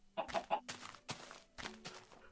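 A string of short, bright clucks from a video game chicken, several quick bursts in an uneven rhythm, clear, with no one talking over them.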